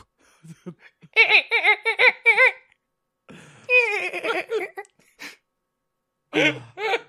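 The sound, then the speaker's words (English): A person imitates dolphin calls: bursts of high, squeaky chattering and warbling clicks, with rising and falling whistle-like tones, in three loud clusters separated by short pauses. “I hear the sounds of a dolphin in distress or delight.”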